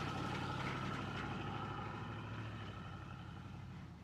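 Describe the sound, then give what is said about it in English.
An Impala's engine idles with a steady, low rumbling hum that holds constant for a few seconds, fairly loud, easing off slightly toward the end with no voices. “Driver picks the music, shotgun shuts his cake hole, and the ones in the back enjoy the ride, idling in the Impala.”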